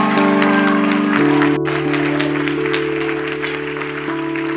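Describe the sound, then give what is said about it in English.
A crowd applauds the guest services team who served that day, steadily and loudly, a dense wash of clapping over sustained organ or keyboard chords that shift pitch midway, with no voices standing out. “You're clapping because their faith brought you the miracle that you're about to receive.”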